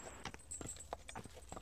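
Horse hooves clip-clopping in a steady, unhurried rhythm, about five soft hoofbeats, heard faintly with no one talking.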